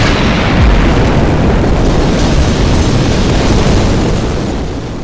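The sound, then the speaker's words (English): A massive, sustained rumbling roar with crackling and thudding debris, loud and dense throughout the five seconds, like a structure collapsing in an explosive crash, easing slightly at the end. No voices. “They began to rise up from the building just as it started to collapse.”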